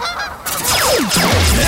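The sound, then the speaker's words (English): Loud Canada geese honk in a burst of overlapping, harsh calls, several downward-sliding squawks piling on each other for under two seconds. No one speaks. “We teach Canadian geese to strike back.”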